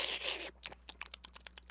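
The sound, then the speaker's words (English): A voice mimics a woman's noisy eating in a mukbang eating show: a half-second airy slurp, then a rapid run of about ten wet lip-smacking clicks. “Like, she pretty much just eats and she smacks and she's just oh, like, no. yeah. Weird. And, like, she slurps.”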